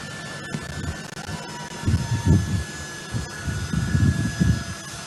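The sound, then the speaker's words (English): A jet engine roars steadily with a broad rumbling wash and a few high whining tones, swelling in waves as an aircraft takes off from a crowded airport in Afghanistan while people try to physically hold on to the plane; no voices stand out. “all these Afghan citizens are flooding the airport, trying, as you'll see in this clip, trying to hold on to the plane, physically hold on as the plane's taking off.”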